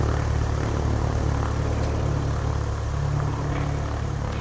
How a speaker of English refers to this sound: The plane rocks away as we bob up and down, clearing the storm.